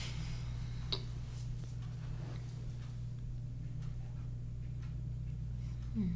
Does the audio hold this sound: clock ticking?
yes